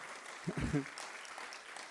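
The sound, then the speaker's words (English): A church audience gives God a round of applause, a dense, steady wash of many hands clapping, with a brief voice rising out of the crowd partway through. “Yeah, you can give God a round of applause.”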